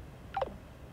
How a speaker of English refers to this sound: He's just put the phone down.